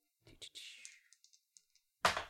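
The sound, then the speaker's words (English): Dice clatter and tumble across a hard surface in a quick run of small plastic clicks, fading into scattered taps before a sudden louder rattle bursts in at the end; the roll comes to 5, 4 and 1, a total of 10. “Damn, these dice are doing me some favors.”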